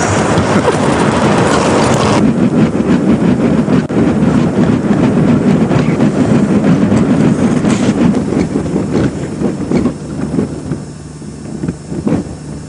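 A continuous deep rumbling roar with grinding and creaking, like a freight train, as sea ice grinds and cracks under pressure around the ice chunk the people are standing on, sustained throughout with occasional sharper cracks and some wind buffeting the microphone.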